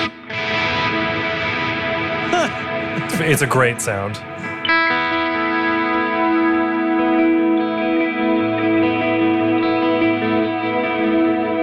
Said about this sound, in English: I'm not hooked up in stereo here, so you're not going to hear this, but the new Heliosphere delay. Oh, I hear what's supposed to be stereo about it. Yeah. So it adds reverb to one of the sides, and I think that side like changes.